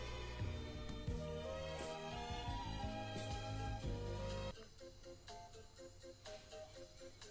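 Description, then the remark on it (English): A dense, loud musical passage cuts off abruptly, and a quieter phone ringtone follows, its short melodic notes repeating in a steady pattern with no one speaking. “This is the part of the podcast where Tony takes a phone call.”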